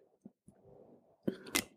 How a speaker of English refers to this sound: All right, I'm just going to have a little sip of kombucha here.